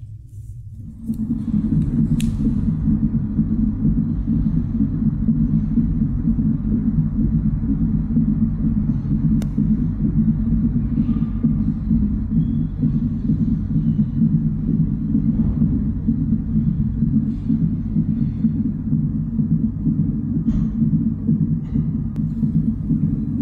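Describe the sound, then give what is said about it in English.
A fetal heartbeat on an ultrasound monitor: a loud, steady, rapid whooshing throb that runs continuously over a deep rumbling background, with no voices. “And I want you to hear this heartbeat, because the baby has a heartbeat.”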